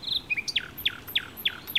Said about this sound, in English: That didn't sound like a squawk. What's that? Those are wild geese. They're not super squawky, though. They sound more like a dog's chew toy. Or a rubber duck for the bath.